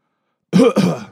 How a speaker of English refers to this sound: Do we all want to cough right now?